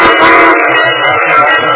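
A train sound effect: a loud, sustained whistle blast over a dense mechanical rumble, continuous throughout, with no voices.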